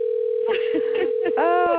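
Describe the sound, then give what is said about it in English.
A steady telephone ringing tone from an outgoing call drones on without a break, with a voice murmuring over it partway through. “And I'm calling. Hold on a minute.”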